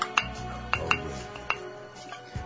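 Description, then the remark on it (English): Glenlivet 12-year-old whisky being poured into a glass, with a soft liquid trickle and several light, bright glassy clinks scattered irregularly throughout. “a drink of some Glenlivet 12-year-old.”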